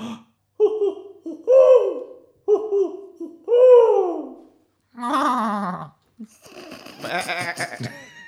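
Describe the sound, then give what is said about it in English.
A voice imitates an owl with two pairs of hooting calls, each ending in a swooping hoot, followed by rougher bleat-like vocal sounds and laughter. “Did someone else start doing an owl call?”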